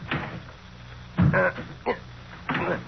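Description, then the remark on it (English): Someone yanks at the jammed door of a wrecked car that has crashed into a tree: four short bursts of rattling and thudding metal, spaced irregularly, with the latch never giving way. “No soap. It's jammed, but good.”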